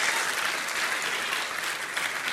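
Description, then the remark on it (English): An audience claps their hands in steady, dense applause on the 6th of July, many overlapping claps blending into a continuous even roar with no voices standing out. “On this 6th day of July, why don't you clap your hands and say, God's house is still a good thing.”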